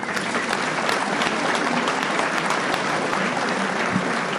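A crowd at a recovery group meeting claps steadily for several seconds after a speaker's talk on step 10, a dense, even wash of many hands with no break and no voices standing out.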